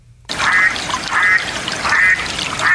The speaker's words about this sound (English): I am looking for a specific type of duck. Quacking mallards. Pond farm ducks or something. No, he got it right. It's a mallard duck. Mallard.